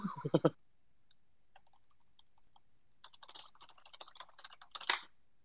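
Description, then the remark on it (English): Rapid, forceful clacking of computer keyboard keys, fairly loud, coming in a dense burst of keystrokes after a short vocal sound and a pause. “my typing speed is way worse than what it used to be back in the RuneScape days”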